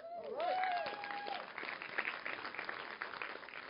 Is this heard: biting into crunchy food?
no